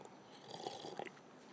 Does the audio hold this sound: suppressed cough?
no